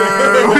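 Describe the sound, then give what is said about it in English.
A person's voice imitates a cow's moo as "shmoo" with one short, drawn-out, humming call, fairly loud, with no other sounds around it. “That's the sound cows are really making. Shmoo.”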